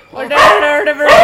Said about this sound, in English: My dog's barking because my husband's about to leave, so he needs to tell us all that my husband is leaving by barking at the television.